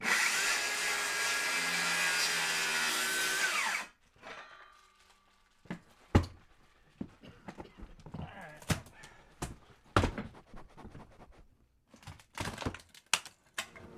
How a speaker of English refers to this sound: it's time to cut into the floor.